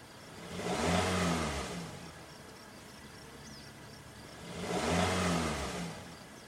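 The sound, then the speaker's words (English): A car engine revs up twice, each surge rising to a roar and falling back, with a steady idling rumble between the two bursts. No one speaks. “Tell her to keep it revving.”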